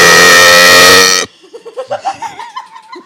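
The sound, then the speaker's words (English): A loud, brassy cartoon alarm blares in one sustained buzzing tone for just over a second, then cuts off abruptly, leaving softer voices and laughter-like murmurs. “Hey, bro, that was SpongeBob's alarm.”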